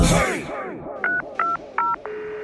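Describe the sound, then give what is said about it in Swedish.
A phone number is dialed with touch tones to call a mother: three short, evenly spaced beeps, then a longer steady tone, clear over a brief burst of noise at the start. “Ja, jag måste ringa upp min mamma. Jag gör du det. Ring du henne.”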